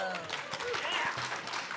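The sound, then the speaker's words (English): An audience claps in a dense, steady burst of applause after an audience member asks about favorite city or state-specific food, holding at an even loudness throughout, with a few faint voices mixed in beneath the clapping. “People are clapping because it wasn't like a drunk, insane question.”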